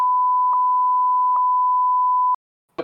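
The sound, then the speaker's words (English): A steady, loud single-tone censor bleep covering a spoken phone number runs for over two seconds with faint clicks where speech is cut beneath it, then stops abruptly before a brief burst of voice. “You have to edit the number here so people don't get it on the podcast.”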